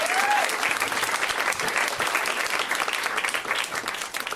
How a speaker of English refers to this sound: I turned out amazing. Yeah, you can clap.